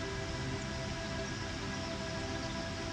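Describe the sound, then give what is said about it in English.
A steady, unbroken roar of rushing stream water tumbling over rocks and old branches and carrying sand and pebbles, a dense wash of hiss and rumble that holds at the same level throughout, with no voices. “Really hear the roar that only moving water can make.”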